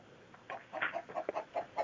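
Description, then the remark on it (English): An angry chicken on the third floor of a hotel clucks in a quick string of short, agitated bursts, moderately loud, with a thin, muffled telephone-like quality and no talking. “Okay, because I do have an angry chicken.”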